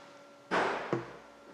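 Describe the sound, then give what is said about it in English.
A door is pushed shut with a solid thud, followed a moment later by a second, sharper knock as it latches. No one speaks, and a faint hum sits underneath. “I'm going to shut that door because there's now going literally on.”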